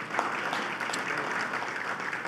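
An audience claps steadily to thank the hosts whose facility is being used, a dense, even wash of many hands with no single claps standing out, sustained at a moderate level throughout.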